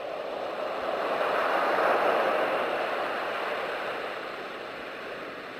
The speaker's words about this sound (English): Turn on soothing baby sounds. Wait for sleep to wash back over her.